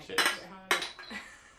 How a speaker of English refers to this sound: That was a good beer clink, though. I'm not gonna lie to you guys. The empty can helps with acoustics.